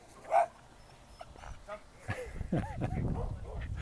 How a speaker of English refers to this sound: The dogs are out.